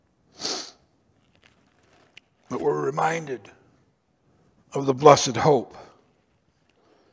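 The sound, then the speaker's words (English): A single quick, sharp sneeze bursts out, followed after a pause by a person speaking in two short phrases. “Bless you.”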